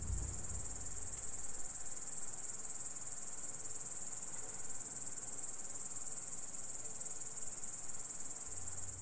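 A continuous, high-pitched, cricket-like orthopteran stridulation trill holds steady for the whole stretch, shrill and even over a faint background hush, with no voices present.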